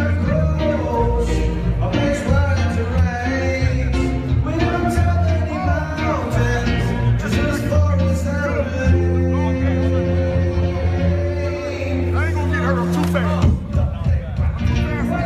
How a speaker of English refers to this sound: But the Balls showed up in Lithuania, and it was a pretty big media event. The airport was mobbed with people, and here's audio of Lithuanians very excited seeing them finally landing and singing the official, non-official song of the country.